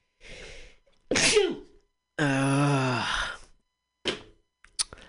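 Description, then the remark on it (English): A loud sneeze with a sharp intake of breath, followed by a long groaning vocal release and a couple of short breathy sounds afterward. “If only it were as easy to get rid of a corrupt officer as it was to sneeze.”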